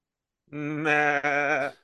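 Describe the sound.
A human voice imitates a goat's bleat, one sustained wavering "maaa" lasting over a second with a brief break midway, loud and close with no other sounds.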